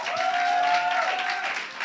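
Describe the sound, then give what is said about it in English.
A crowd applauds steadily for a woman speaker when asked to give her a round of applause, a dense wash of many hands clapping at once, fairly loud and sustained, with a faint tonal hum running beneath the clapping. “Can you give her a round of applause, please?”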